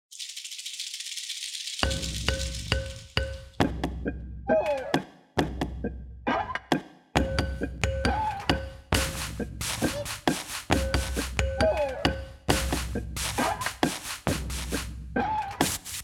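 Improvised percussion made from objects found around a yard, park and playground, plus a bass drum hit: a steady rhythmic groove of thunks, knocks and rattles with squeaky, ringing metallic tones on top, including a squeaky pole, played fairly loud, with no talking.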